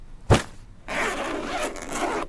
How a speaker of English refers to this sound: I always love a good love a good packing sequence. It's always it's always nice. Very satisfying zipper.